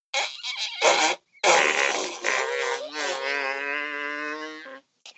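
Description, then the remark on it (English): A series of loud fake fart noises made by a person blowing against their hands held to their mouth, with brief pauses between bursts and a long, tonal, buzzing raspberry at the end. “Put your hands to your mouth and then you make a fart noise.”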